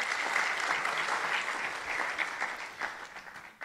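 Steady audience applause, a dense wash of many hands clapping at a fairly even level for several seconds, thinning slightly toward the end, with no voices over it.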